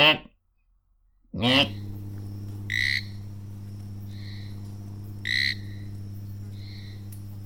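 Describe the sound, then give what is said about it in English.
A person imitates a trilled frog call with their voice, making a low, buzzing croak that swells into two or three rattling trills, fairly loud after a brief silence. “So basically, these birds are well known for having very peculiar vocalisations, which are very trilled and unusual. I'm going to emulate the noise.”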